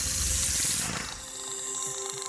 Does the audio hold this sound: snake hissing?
yes